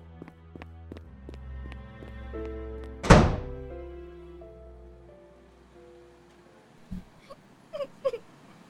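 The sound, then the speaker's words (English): A single heavy door slams shut with a loud thud partway through, ringing briefly over a soft musical backdrop, followed by a few faint knocks and rustles. “Fuck, you can't even close a door. Right, well, watch me do that last one.”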